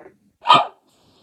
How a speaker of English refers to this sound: And a dog barking.